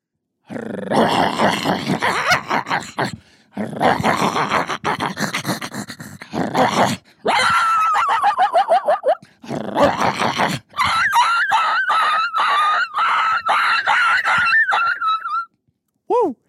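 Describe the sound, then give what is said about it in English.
Coyotes fighting: harsh snarling and growling bursts give way to frantic high-pitched yips and wavering whines, loud and nearly continuous, ending with a couple of short rising yelps. “Well, probably that the coyote fight from the first one, I would say.”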